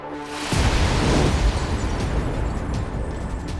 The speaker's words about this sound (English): A pile of explosives under the podium detonates, sending him through the roof before plunging back down to the floor.